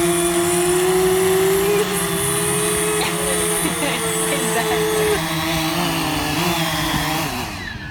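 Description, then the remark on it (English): A drone's loud, steady propeller buzz fills the whole stretch, its whining pitch wavering and dipping slightly as it hovers, then trailing off abruptly at the end. “And so a drone, if you fly it, is actually really noisy.”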